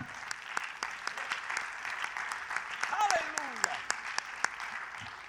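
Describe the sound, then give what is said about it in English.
A crowd claps their hands in steady, scattered applause for a scripture, with sharp individual claps popping out over a dense wash of clapping; a voice briefly calls out partway through. “I will always clap my hands for that scripture because that's what transformed my life.”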